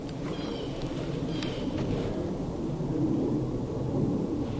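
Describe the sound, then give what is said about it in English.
A steady, low airplane roar drones overhead throughout, a dense rumbling wash with no breaks. A few faint, brief high chirps flicker in the first second and a half. “Oh, shut up, plane.”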